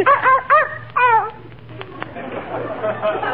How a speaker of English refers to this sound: Fifi is a very intelligent dog and very valuable, too.